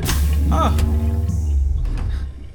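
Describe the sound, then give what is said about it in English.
A sliding pod door opens with a steady mechanical whoosh and a humming, whining tone that briefly rises in pitch, lasting a couple of seconds before easing off. “Can I get out of the pod now? Of course, silly. I'm just gonna open your door.”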